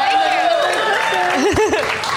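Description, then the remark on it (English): Audience applause at a comedy club, clapping for drinks being brought out, fills the space steadily, with loud whoops and cheering voices rising over the clapping throughout. “Yes, applause for booze.”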